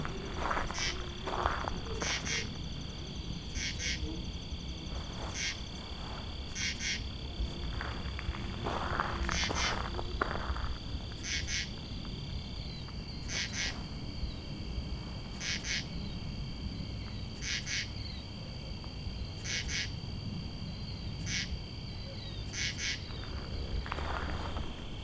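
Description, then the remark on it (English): A katydid calls with short, raspy bursts repeated at a steady interval of about two seconds, close by, over a constant high-pitched insect drone and faint outdoor background. “Not a grasshopper, is my guess. Maybe a katydid of some kind.”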